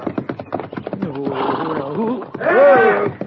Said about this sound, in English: But that horse is stomping him.